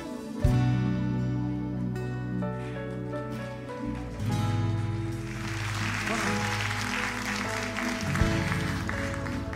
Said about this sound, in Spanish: La verdad que me sorprendieron. No esperaba que iban a aplaudir en ese momento.